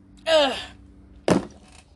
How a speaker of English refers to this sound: Slams bottle down.